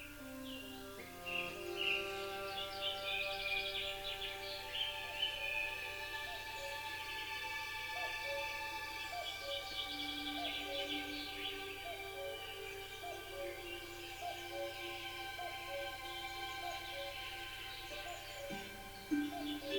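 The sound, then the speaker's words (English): A cuckoo calls and a robin sings, chirps and trills, scattered across the whole stretch over a steady bed of soft, sustained musical tones, with no one speaking. “Parky continued on with his litter pick, kept company by the cuckoo. And Little Red Robin.”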